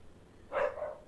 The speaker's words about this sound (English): There's dogs barking.